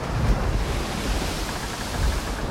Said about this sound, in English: the seas are getting a little rough here